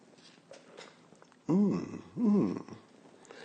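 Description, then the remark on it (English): Two loud slurping sips of a beverage from a cup in quick succession, each with a throaty, voiced rasp, over a quiet background with no talking. “And get ready for the simultaneous sip. It happens now.”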